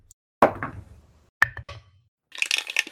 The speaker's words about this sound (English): Roll me perception. Time to perceive. I guess I can roll dice.